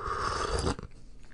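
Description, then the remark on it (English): An airy slurp of someone sipping hot black tea with a little half and half, one continuous breathy draw lasting under a second, then quiet mouth noise afterward. “Sip of tea.”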